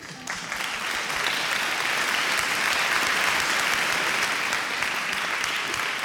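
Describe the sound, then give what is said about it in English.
An audience at a Sydney Film Festival event at the Apple Store, Sydney, breaks into sustained applause welcoming guests Sean Baker and the moderator from SBS, a dense wash of many hands clapping that swells quickly within the first second and holds steady and loud throughout, with no talking over it. “Would you please join me in welcoming our guests, Sean Baker, and this afternoon's moderator, Sandy George from SBS.”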